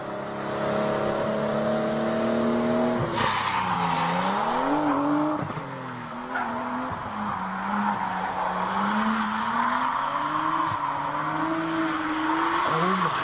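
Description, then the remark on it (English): A car engine revs and whines continuously, its pitch rising and falling as tires skid and squeal through a long drift on a highway late at night near an exit, loud for the whole stretch. “This video, it's just late at night, and this drifter, there's like an exit.”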